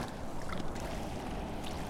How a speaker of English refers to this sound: Yeah, it's really fascinating with the rain and hearing it fall on the water.